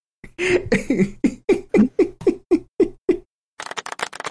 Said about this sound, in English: Play their crickets again? Okay. Easiest crickets. It's a little too fast for me. Yeah, that's better. That's better. It sounds like just a shitload of crickets.